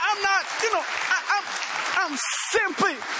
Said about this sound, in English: The main man is Jesus Christ. I'm just delivering the message of Jesus Christ, and I don't need a clap, I promise. But let's give him a shout of praise, and let's just clap it for him.